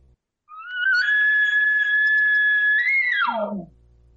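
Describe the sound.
A long, drawn-out elk cow call, imitated by a person through a tube: a loud, steady high-pitched mew that holds for nearly three seconds, then bends up and drops off sharply.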